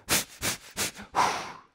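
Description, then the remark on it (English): A voice imitates the labor breathing technique of the biblical Hannah during contractions: three quick, sharp breaths in a steady rhythm followed by one longer, drawn-out exhale, all breathy and noisy with no words. “9 months passed and Hannah is having contractions. She's doing breathing techniques.”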